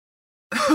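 A single short, harsh cough bursts in abruptly after a moment of silence, fairly loud, with no one speaking.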